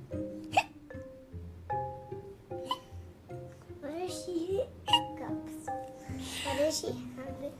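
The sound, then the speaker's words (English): A voice imitates hiccups with a string of short, sharp vocal hics at irregular intervals, loud, set against a light musical background with soft pitched tones. “She tiptoed closer, hiccuping with every step.”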